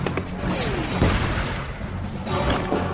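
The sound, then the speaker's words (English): Loud, dense bursts of gunfire crackle over a rumbling, chaotic background, with several sharp impacts and booms punctuating the steady roar of a firefight. “Must have been hit by quite a few bullets.”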